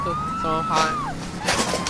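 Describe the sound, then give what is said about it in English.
A police siren in a video game wails steadily, its rising and falling tone running through the whole moment while voices and game noise clutter the foreground. “There's the cops.”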